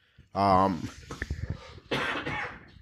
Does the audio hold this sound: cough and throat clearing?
yes